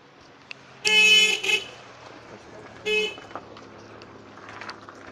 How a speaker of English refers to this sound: Yeah, that's a car that just passed here.